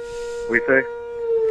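A fire alarm siren in Clarksville, Tennessee wails in a steady, sustained tone like an air raid drill, with a brief burst of voice rising over it partway through.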